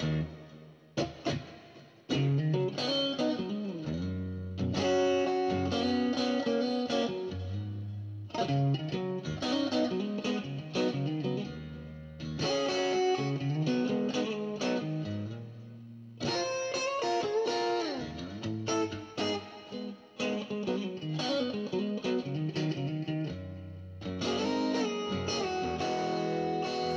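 Distorted electric guitar plays a blues rock cover song with bending, sustained notes and expressive phrases over a steady bass line, loud and continuous with brief pauses between phrases, and no singing or talking.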